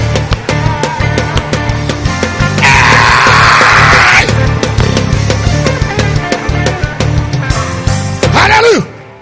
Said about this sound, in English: Come on, clap your hands and scream.